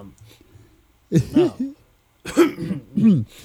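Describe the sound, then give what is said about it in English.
Two short, throaty coughs, each with a voiced, almost spoken edge, separated by a brief pause after a faint murmur of background noise. “I was gonna cough and say somebody's name, but I the cough got cut too short.”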